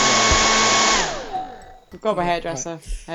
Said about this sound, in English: Hairdryer.